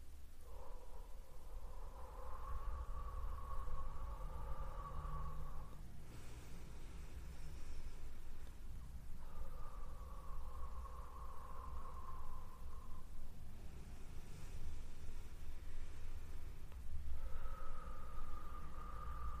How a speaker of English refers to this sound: So, to begin here, we're going to place one hand on our heart, one hand on our belly button, and we're going to take 3 deep breaths, breathing in through the nose and exhale out the mouth.